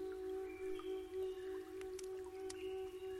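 Quiet trickling water of a small babbling brook by a clearing in the woods in a warm tropical location, with a few distinct drips landing near the end, set against a steady, sustained low hum, with no voices.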